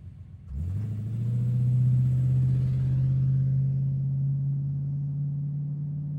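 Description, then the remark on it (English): A car engine rises in pitch after a brief quiet start, then settles into a steady, low drone as the vehicle drives along. No one speaks. “Can you drive a bit faster, please?”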